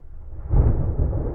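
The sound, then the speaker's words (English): A deep, low rumble of thunder swells in after a quieter start and rolls on steadily, growling across open sky during a storm over a valley, with no voices present. “Howling wind, growling thunder, explosive flashes of lightning one minute, dead calm the next.”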